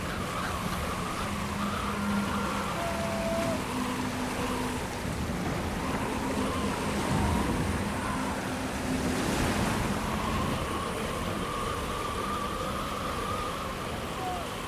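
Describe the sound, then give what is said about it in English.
A stormy sea roars steadily in the rain, waves and wind blending into a dense, constant hiss of surf, with faint sustained tones drifting underneath. There is no talking. “And then we're going to start the skill challenge to get through the stormy seas.”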